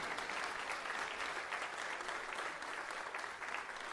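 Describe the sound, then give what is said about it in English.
An audience claps their hands in steady, sustained applause, a hand clap of praise to Jesus, a dense wash of many hands clapping at once without pause for several seconds. “Can we give Jesus a hand clap of praise today?”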